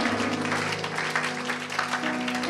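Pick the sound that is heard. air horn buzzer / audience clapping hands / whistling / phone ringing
audience clapping hands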